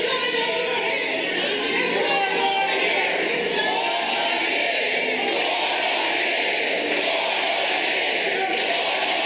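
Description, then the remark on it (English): A large crowd at an event attended by Joe Biden roars and chants "four more years" continuously to drown out pro-Palestinian protesters who interrupted, a dense wall of many voices with no pauses, loud and steady throughout. “And again, I'm literally shaking at this Christian nationalism that was on display as the crowd was trying to drown them out while Joe Biden was there.”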